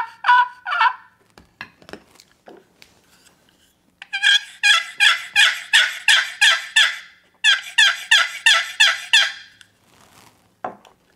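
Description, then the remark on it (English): Three different turkey hunting calls produce a few short yelps, then two long runs of rapid, evenly paced raspy yelps, loud, with no one talking. “You know, I got three different calls here. Each one of them makes a different sound, does a different thing.”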